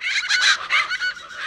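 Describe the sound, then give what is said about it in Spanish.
A loud, harsh call of a plain chachalaca, a large chicken-like bird, repeats in rapid raucous bursts, strident, with no other sounds or voices around it. “Mientras que una chachalaca del golfo, toda grandota y parecida a una gallina, grita tan fuerte que sofoca el canto de todos los demás.”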